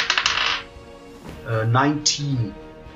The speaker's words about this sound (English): So you roll the dice, and they definitely turn out to be in your favor.